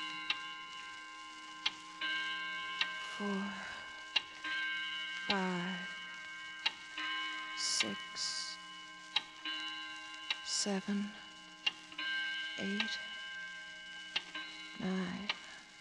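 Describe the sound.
A clock ticks steadily with sharp clicks roughly once a second, while brief murmured voices and a faint sustained hum sit in the background.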